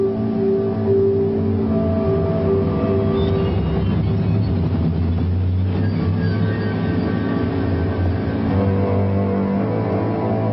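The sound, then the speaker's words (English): A Ford Mercury car, fitted with a hidden exhaust pipe releasing bacteria, runs steadily on a street in Manhattan, New York, in February 1956: a continuous low rumble with a humming drone that shifts slightly in pitch, fairly loud with no voices. “A Ford Mercury, specially adapted with a hidden exhaust pipe, pumped out bacteria onto the streets of Manhattan.”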